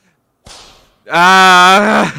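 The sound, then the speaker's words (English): A single sharp whip crack as a man is whipped, with a brief hissing tail, followed moments later by a loud, drawn-out vocal groan or cry that lingers strong. “use your special status to whip him again!”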